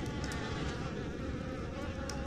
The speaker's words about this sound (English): Make a little circle. Have them float around in a little circle. A fucking cloud of bees just swarm around.